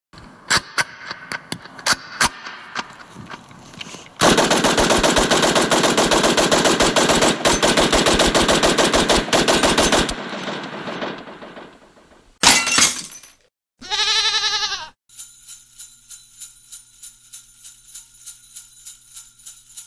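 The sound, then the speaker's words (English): Scattered sharp shots give way to a long, loud burst of rapid machine gun fire lasting several seconds, followed by crashing, breaking noises and a few trailing electronic tones. No one speaks. “please shoot all these fools.”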